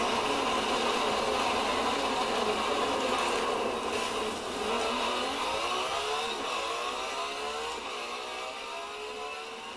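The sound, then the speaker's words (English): The high-pitched V12 hybrid engine of a Ferrari FXXK sports car screams steadily during a race, its whine climbing as it revs up toward the end. It is loud throughout, with no one talking. “This Ferrari FXXK is amazing handling, but not as fast as the rest of these cars.”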